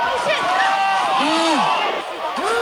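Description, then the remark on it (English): A crowd in a video being played applauds and cheers in a steady, loud wash of noise, with rising and falling shouts and voices standing out above the din throughout. “Why are they applauding?”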